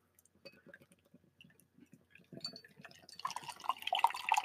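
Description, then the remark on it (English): Liquid trickling and dripping softly at first, then a louder, fizzy rush as a double IPA beer streams into a glass and foams up, with no talking. The beer pours a very dark golden, dark copper color. “It's a very dark golden pour.”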